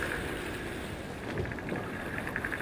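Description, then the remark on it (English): Dolphin clicks picked up on a homemade waterproof microphone underwater: short bursts of faint, rapid ticking rise out of a steady, rushing wash of water noise, with no voices. “Today, he has picked up some little clicks.”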